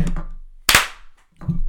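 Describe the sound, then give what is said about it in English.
A single sharp hand clap, made to check that a recording is in sync, cracks out loudly and fades quickly, with quieter murmuring sounds before and after it. “You can always tell when we're in sync from that clap.”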